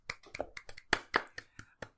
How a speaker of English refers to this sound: how did you manage to applaud? That's very impressive.